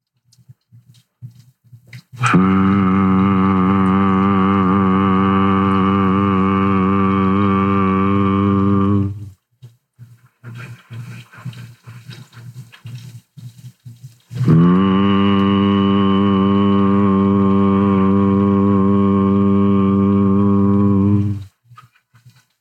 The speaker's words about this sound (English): And I like to do the out count through pursed lips. If you want a little bit extra vagal nerve activation when you exhale, you can kind of make a humming noise like this.